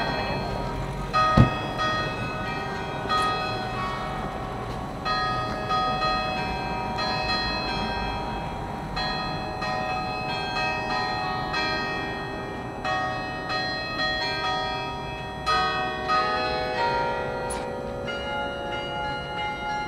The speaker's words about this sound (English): So, obviously, that's just a bunch of bells ringing